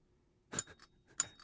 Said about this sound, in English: My bell's a little... Oh. I hear it. I hear it, though. I hear it going. That's two bells. Two bells. Two bells.